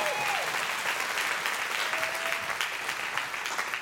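Steady applause from an audience, a dense continuous patter of many hands clapping at moderate loudness for several seconds, with a faint whistle-like tone briefly audible early on.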